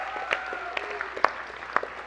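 An audience applauds steadily for a couple of seconds, a dense patter of hand claps with a few sharper claps standing out, heard at moderate distance over a faint sustained tone.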